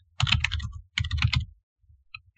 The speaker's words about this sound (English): And you're probably going to hear me typing.